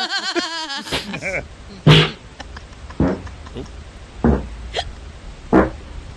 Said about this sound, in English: It's like the scales of farts. Is he running in his sleep? No, he's... He has such control. He's farting all night? Yeah, so he's supposed to record his snoring. He's recording his farting. He has sleep crapnia.